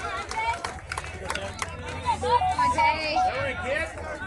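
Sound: crowd chatter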